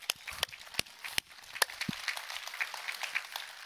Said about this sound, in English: We can clap for her.